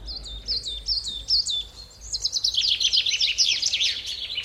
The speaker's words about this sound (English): But if you want to create something very beautiful, then you can only use one sound. It's birds singing.